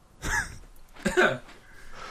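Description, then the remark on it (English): Two raspy throat clearings about a second apart, each a short gravelly burst with no words spoken. “Sorry, just clearing my throat.”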